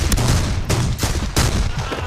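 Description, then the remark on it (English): Loud, forceful gunfire from a film, several sharp blasts in quick, irregular succession over a dense, booming rumble, with no one talking. “But actually just the sound of the gunshots. Yes, they are forceful and there's a definite impact to them for sure.”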